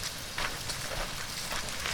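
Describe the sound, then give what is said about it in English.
Steady, dense patter of April rain striking a surface, a continuous hiss with faint irregular ticks, even in loudness, with no voices. “I'm delighted every day it rains.”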